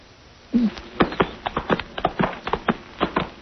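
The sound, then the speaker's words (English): A ridden horse's hooves clip-clop in a steady, uneven walking rhythm, a dozen or so crisp knocks following a brief low snort at the start, with no talking. “Watch out your horse doesn't stumble.”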